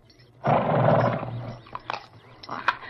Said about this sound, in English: I did it. I fed him. You see, you're really not afraid of horses at all.